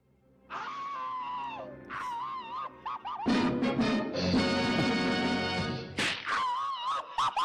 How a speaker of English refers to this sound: Yeah, I always had that repetitious scream. Like, it was not just one scream. It was almost like a yodeling scream there.